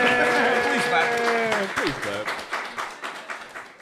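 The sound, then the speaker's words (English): An audience at DreamCon 2023 claps, a dense patter of many hands that carries on steadily throughout, with voices talking and cheering over the first half before fading under the applause. “Can we clap? Yeah, clap. Go ahead.”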